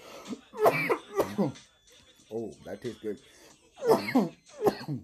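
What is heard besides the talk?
coughing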